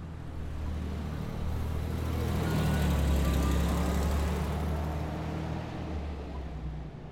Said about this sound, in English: To the traffic rushing by, that's me on a weekday. I pass by here after work, often being stopped by the traffic lights